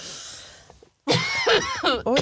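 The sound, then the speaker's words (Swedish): After a brief silence, someone breaks into a loud fit of coughing, about four harsh, throaty bursts in quick succession, after getting water down the wrong way. “Ursäkta, men jag satte vatten i halsen nu.”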